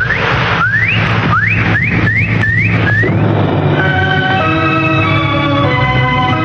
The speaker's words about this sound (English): Before 9, I hope you heard the whistle.